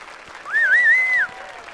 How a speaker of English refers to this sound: I feel like I should applaud too.